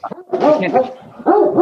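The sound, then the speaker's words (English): Loud dog barking in short bursts, a couple of quick yips followed by longer, whining barks with a brief pause between them. “It happens to the dogs. They have to keep warming up the barking.”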